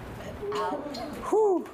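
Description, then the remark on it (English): A person mimics an owl's hoot with their voice: a couple of drawn-out, rounded 'hoo' calls, the last one rising and falling, fairly loud. “The owl. What does the owl say?”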